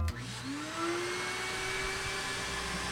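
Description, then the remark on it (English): A record cleaning machine's vacuum motor kicks on with a click and whines up to a steady, loud suction roar as it sucks the dirty cleaning solution off a vinyl record, holding for the rest of the moment, with no one talking. “He's gonna turn the vacuum over the record and press the vacuum button.”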